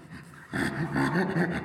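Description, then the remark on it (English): A voice imitates a chimpanzee's panting laugh: a quick, rhythmic run of breathy, voiced huffs on both in-breath and out-breath, starting abruptly after a short quiet moment and staying fairly loud. “Chimpanzees, their laugh is on the inhalation and the exhalation, and it's kind of a panting sound.”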